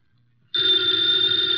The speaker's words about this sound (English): Ladies and gentlemen, the ringing of that phone bell brings you mystery, adventure.